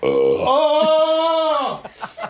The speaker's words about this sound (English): Oh! It's painful. It's so painful to burp.